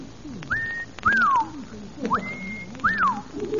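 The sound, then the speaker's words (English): A person whistles an imitation of the mating call of the pink bosom warbler: four clear phrases alternating a rising, held note with a downward swoop, over a faint low background hum. “When I first saw them, I whistled the mating call of the pink bosom warbler to see if the mother bird would respond.”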